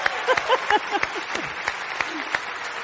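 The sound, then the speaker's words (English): An audience at a church service applauds with steady, dense clapping, while scattered whoops and whistles rise above it, loud throughout the short burst. “Give it up for my mom,”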